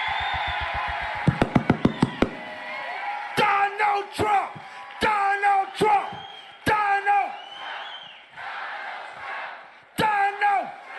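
A large crowd at a Reawaken America tour rally roars and yells in loud, rhythmic bursts, screaming "Donald Trump" like a repeated chant, with a few sharp thumps early on amid the steady din of cheering.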